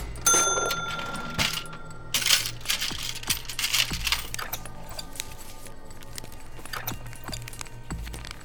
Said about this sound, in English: walked over to the cash register and opened it.